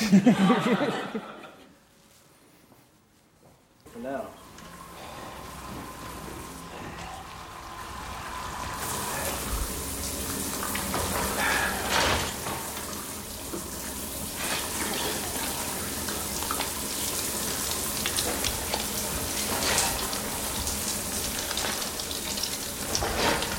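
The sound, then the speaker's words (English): Water from a shower runs in a steady, hissing rush that starts after a brief quiet moment and continues fairly loud, with faint voices and a light chuckle mixed in. “I thought it'd be fun if we both took a shower.”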